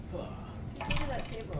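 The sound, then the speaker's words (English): After a quiet moment, small dice clatter and rattle across a hard tabletop in a quick burst of light, bright clicks, with faint voices murmuring in the background. “Can I borrow the dice?”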